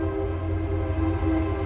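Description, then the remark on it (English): A freight train, called United Pacific by the speaker, rumbles steadily through a Metrolink train station, its heavy low drone joined by a sustained horn-like tone, loud for the whole stretch with no voices. “They're running a train back and forth, just like on the Amtrak train tracks.”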